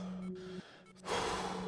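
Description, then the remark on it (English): Heavy breathing of someone infected with the contagious disease Selenitis: a loud, rushing breath swells up in the second half over a steady low hum, with a quieter breathy stretch just before it. No speech. “It's already starting. Heavy breathing, followed by loss of internal monologue.”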